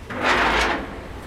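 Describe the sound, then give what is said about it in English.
A heavy steel door at the Biosphere 2 facility, one of its two steel doors and resembling a submarine door, grinds open in one continuous scraping slide, lasting about a second with a low rumble underneath, fairly loud, with no voices. “Visitors today can freely enter and leave via its two steel doors.”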